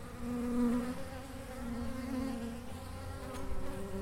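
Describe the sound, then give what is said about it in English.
A steady, dense hum of honeybees buzzing around beehives kept for both honey and pollinating crops, a continuous droning drone with a low pitch and slight wavering, no voices present. “So you've got a few beehives here?”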